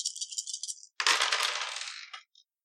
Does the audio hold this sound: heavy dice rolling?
yes